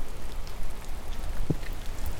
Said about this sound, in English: But right now I'm getting rained on. And I did drop this recorder in my buddy Mike's toilet once, and it still survived, but I mean, it's still, I shouldn't have it out in the rain. This is a bad idea.